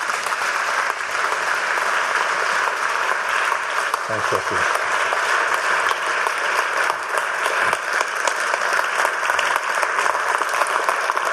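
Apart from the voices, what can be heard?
audience applause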